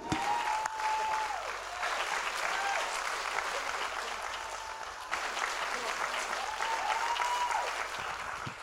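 An audience claps steadily for several seconds, a dense, continuous roar of many hands, with faint raised voices cheering and calling out beneath it.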